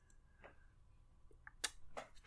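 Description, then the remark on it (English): A handful of sharp, quiet clicks and clatters land irregularly as brand-new dice are rolled for the first time, tumbling and knocking across a hard surface, with the busiest rattle near the end and no one speaking. “Folks, using my brand new dice that I bought 3 weeks ago for the first time.”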